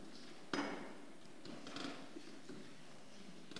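A church audience turns many Bible pages to page 1042 at once during a sermon, a soft, continuous papery shuffle from a crowd, with one sharper knock early on. No one speaks.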